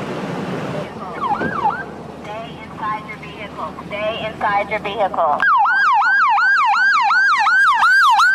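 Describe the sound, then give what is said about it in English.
A tribal fire department's fire rescue vehicle siren wails, first under voices and background noise, then bursting into a loud, rapid yelp that cycles up and down repeatedly. “Yep, tribal fire department, too. Or fire rescue.”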